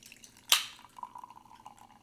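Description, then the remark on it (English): A sharp clink against glass, followed by a steady, trickling pour of liquid with a faint ringing tone that wavers as the glass fills. “Ooh, this is a pretty solid pour.”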